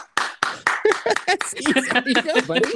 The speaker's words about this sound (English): Dude, your clap is epic. Huh? It's so loud. Huh? Yeah, I know. It's so loud you can't even hear me.